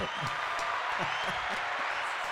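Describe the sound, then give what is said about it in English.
Steady applause from an audience: a dense, even wash of many hands clapping at once, moderately loud and sustained without a break, with a faint voice murmuring underneath. “Where's the clapping? Hey, let's do the audience.”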